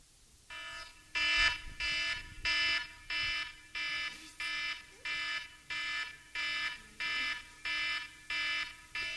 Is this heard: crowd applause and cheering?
no